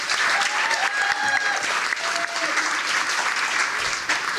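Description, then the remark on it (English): An audience at the Black Box Theatre, during the Northern Ireland Science Festival, claps steadily and continuously, a dense, sustained applause with no pauses, a few faint whistles or cheers rising briefly above it. “Give yourselves a round of applause and a warm welcome.”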